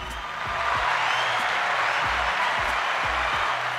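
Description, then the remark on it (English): An audience applauds in a dense, steady wash of clapping for about four seconds, with a faint rhythmic low thump pulsing underneath and no talking. “Let's just give him a round of applause for him.”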